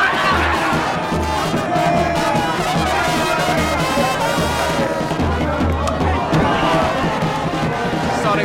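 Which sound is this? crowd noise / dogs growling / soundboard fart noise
crowd noise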